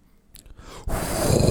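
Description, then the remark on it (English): After a brief quiet stretch, a person's voice abruptly breaks into a loud, raspy, tiger-like growling roar that holds steady and grows slightly rougher to the end, harsh throughout. “Why is my voice doing that? It's like a tiger.”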